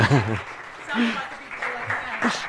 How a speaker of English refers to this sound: Okay, sorry. Thank you very much. I think we can give them another round of applause.